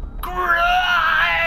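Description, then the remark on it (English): A woman lets out a sudden, throaty shriek that starts abruptly and holds loud and strained for over a second, raspy and wavering at high pitch, with no other sounds. “She shrieked throatily, unable to turn that air into words as most bodies did.”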